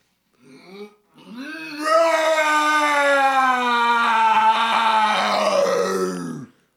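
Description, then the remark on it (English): A human voice imitates a lion's roar, the roar made when waking up from sleeping: a short low grunt, then one long sustained, strained vocal roar with rich harmonics that holds steady for several seconds before dropping off. “That was a roar when you're waking up from sleeping.”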